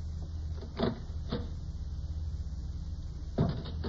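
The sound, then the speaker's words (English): A door is eased open a little, with a few soft clicks and creaks from the latch spaced over a few seconds against a steady low hum, and no one speaking. “Just open that door a crack.”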